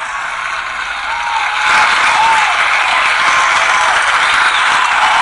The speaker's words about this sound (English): She doesn't mind being a guinea pig, you guys. That might deserve a round of applause.